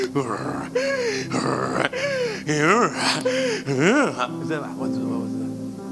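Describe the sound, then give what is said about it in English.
A person mimics snoring with a fairly loud run of drawn-out, breathy snorts and groaning sounds, repeated about six times in a steady rhythm with no words spoken. “… now older. Snoring.”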